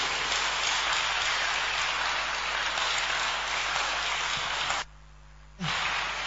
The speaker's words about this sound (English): Please take your seats. Is it okay to clap for Jesus once again?